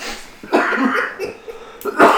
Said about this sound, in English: I can't stop coughing.